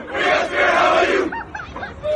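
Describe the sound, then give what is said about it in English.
A crowd of schoolchildren chanting together, a loud, dense roar of voices that breaks off into a few short, higher-pitched shouts before the group swells again. “And then they start chanting something. I don't know if it's a school cheer.”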